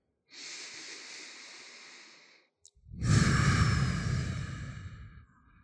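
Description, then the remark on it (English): Two long, slow exhaled breaths during a self-massage along the ribs: a soft airy one lasting about two seconds, then a deeper, heavier sigh-like exhale with a rumbling low end after a brief pause. “And just keep breathing this out, guys.”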